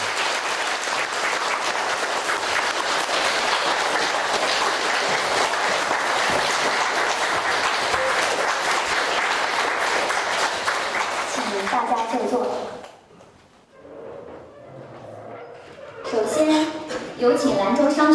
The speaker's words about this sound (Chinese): 下面，请全体起立，让我们以最热烈的掌声欢迎慈悲的索达吉堪布上台。